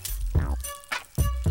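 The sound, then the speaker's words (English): A crinkly plastic bag of kettle chips is handled at a studio desk in several quick rustling bursts, with a soft low rumble underneath and no one talking. “I have some kettle chips, if I can find what I did with the bag. Oh, right beside me.”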